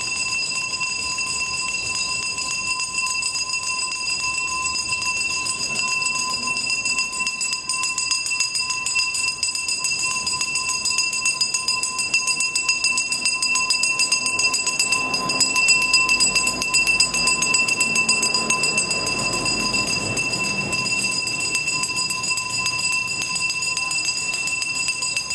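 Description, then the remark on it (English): A garbage man's loud hand bell rings continuously as he walks up and down the street, a bright, shrill metallic clanging, with a faint rumble of passing traffic underneath and no one talking. “I will complain and take for my second pick the garbage man, the garbage truck, and the man who goes up and down my street and every street with his bell.”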